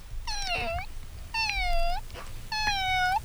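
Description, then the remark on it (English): A human voice imitates a cat, giving three drawn-out meows in steady succession, each rising then falling, fairly loud with no talking between them. “Kitty cat.”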